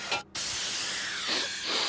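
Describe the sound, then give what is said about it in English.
A pressurized aerosol can of lilac air freshener hisses in a short burst, pauses briefly, then sprays again in a long, steady hiss that swells slightly toward the end. “Say, it's a bit stuffy in here. And I know a certain someone who really fancies lilac.”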